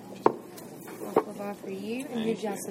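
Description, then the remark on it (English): Two sharp metallic clinks as pieces of silverware are set down on a restaurant table in South Carolina about a second apart, followed by people talking. “For you, and you just some new silverware.”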